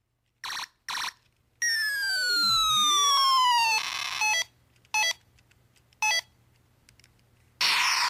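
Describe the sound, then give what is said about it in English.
Buzzy 8-bit electronic beeps from a button keychain toy: a couple of short blips, a long falling laser-like sweep, then several more clipped bursts at uneven intervals, fairly loud with no one talking. “Well, he took, you remember the keychain things that you could buy, and they had the buttons on them where one sounded like you know, it was like an 8-bit sound, and then you had the siren that went, you know.”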